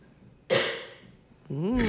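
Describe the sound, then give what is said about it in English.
A single sharp cough bursts out and trails off, followed a moment later by a voice starting to speak. “Cough button. That's what the cough button does, right?”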